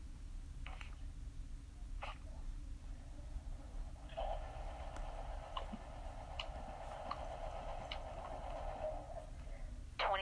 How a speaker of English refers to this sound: Because I roll with real dice.